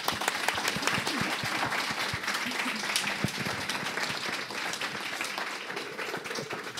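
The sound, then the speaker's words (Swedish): Steady applause from a group fills the whole stretch, many hands clapping densely and evenly with no pauses or voices rising above it. “En applåd till er.”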